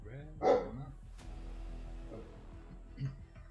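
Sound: dog barking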